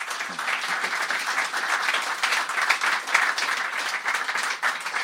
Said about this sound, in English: a big round of applause for Adam, please